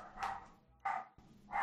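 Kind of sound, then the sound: animal, dog barking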